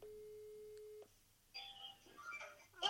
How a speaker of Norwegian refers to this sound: Nå ringer jeg da.